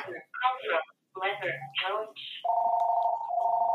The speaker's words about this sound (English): Oh, I'm getting a phone call. Hey, everybody. It's a spam call.